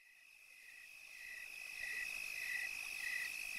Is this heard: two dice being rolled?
no